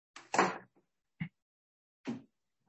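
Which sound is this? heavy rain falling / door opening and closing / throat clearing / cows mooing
door opening and closing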